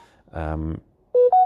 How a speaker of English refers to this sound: And I've got another call coming through. 1 second.